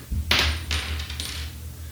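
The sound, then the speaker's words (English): A flipped coin lands with a bright metallic clink, then bounces and rattles a couple more times before settling, over a steady low hum. “And Old Boy won the flip.”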